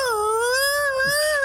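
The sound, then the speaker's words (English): A voice imitates an odd fart noise with one sustained, whiny, high-pitched tone that wavers slightly in pitch, held steadily and fairly loud for about a second and a half with no words. “last week or so, in the shower, I'm making the strangest noises out of my bottom.”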